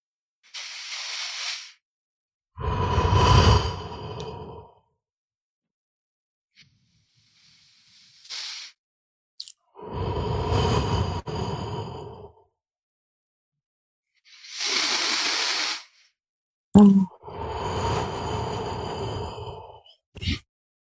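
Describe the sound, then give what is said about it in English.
Three slow, deep clearing breaths taken during a guided breathing exercise, each a hissing inhale followed by a long, sighing exhale, with short pauses between and no talking. “And let's just begin by taking two or three really nice, deep, full, clearing breaths.”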